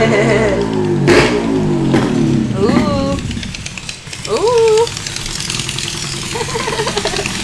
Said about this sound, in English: There's like a motorcycle and then like a little tiny bike. I don't know what that was, but it was really small and cute. It was like circusy.